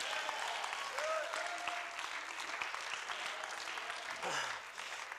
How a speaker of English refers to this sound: Realize there's something valuable here at the Palace of Praise. Somebody clap your hands and say yes.